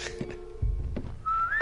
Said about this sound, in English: There's the whistle.